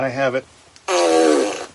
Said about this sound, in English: Is the fart machine? Have we deployed the fart machine today?